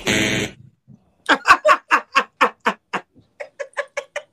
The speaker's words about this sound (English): That's my family feud one. You know, that buzzer, baby.